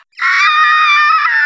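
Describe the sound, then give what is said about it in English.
A loud, sustained, guttural, blood-curdling scream, as a smiling Mr. Mime face morphs into a scream, bursts in abruptly and holds at full intensity, harsh and piercing with a strained, raspy edge, alone with no talking. “Mime face turns from this smile, this eerie, staring smile, and it suddenly morphs into a scream. A guttural, blood-curdling scream.”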